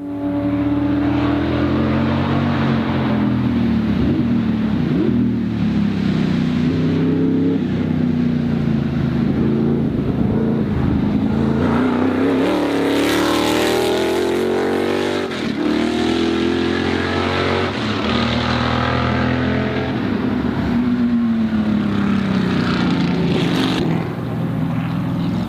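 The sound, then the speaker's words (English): The engine of a vintage Holman Moody Can-Am race car, owned by Tom Cantrell, drones steadily while being driven, its pitch rising and falling as it revs up and shifts through gears, loud with no talking. “And Tom Cantrell, the owner of the car, has been nice enough to let me drive it.”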